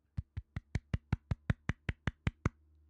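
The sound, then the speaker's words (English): A quiet golf clap, the official golf clap of the Sports Corner segment: about thirteen soft, evenly spaced hand claps in a steady, brisk rhythm, subdued, with no talking. “That is the official golf clap of Sports Corner.”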